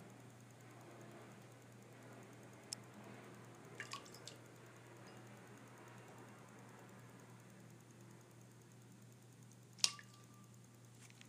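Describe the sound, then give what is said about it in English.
A few small, sparse splashes of water in a bowl as a pet, Gonzo, swipes at his water bowl: scattered quick drips and flicks with long quiet gaps, set against a steady low hum. No one speaks. “The splashing you hear is Gonzo splashing his water bowl.”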